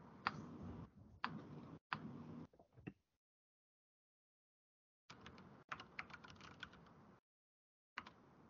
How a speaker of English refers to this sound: Oh, he's typing.